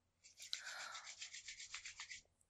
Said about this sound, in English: What was that sound? I hate that sound. That sound? Yeah, that was all in my ear. I was just rubbing my hands together preparing for a clap. Were you doing it over the mic? Well, my phone is on top of my knees, and my hands were above my knees.